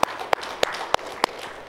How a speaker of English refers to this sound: Let's give the Lord another hand clap if you wouldn't mind, please.